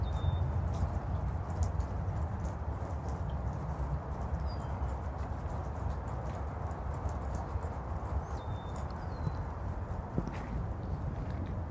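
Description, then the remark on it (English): Steady footsteps crunch along a rocky path, even-paced throughout, with a few faint bird chirps in the background and no one speaking. “As I walk, may my footsteps provide a gentle but constant”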